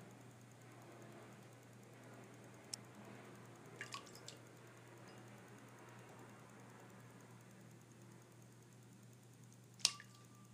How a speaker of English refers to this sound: The splashing you hear is Gonzo splashing his water bowl. I'm not certain why. He's just swiping at it. Like he sees something in there.